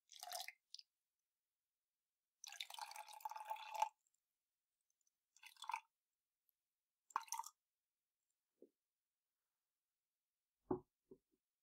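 Water is poured into a glass for drinking in one short, splashy stream lasting over a second, with scattered brief drips and clinks before and after. It is fairly quiet, with no talking.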